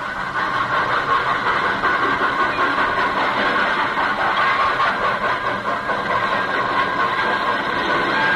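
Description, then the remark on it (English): A leave train coming to a halt in the station at Villefranche on Christmas night 1918, its heavy mechanical rumble loud and steady with a layered hum of engine tones, sustained throughout without pauses as it draws in, and no voices. “A leave train was just coming to a halt in the station at Villefranche.”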